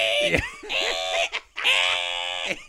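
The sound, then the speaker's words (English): A voice mimics an old continuous-feed word processor printer, as used with 1980s roll paper with holes on the side, with two long, loud, buzzy screeching bursts, strained and nasal, separated by a brief gap and preceded by a short sharp click. “That was what the printer used to sound like? And you had to rip it off and go... Like a word processor printer?”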